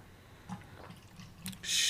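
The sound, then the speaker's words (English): A few soft clicks and taps, then liquid suddenly pours with a loud, bright rushing splash that carries on to the end. “I'm just saying, I'm pouring this time.”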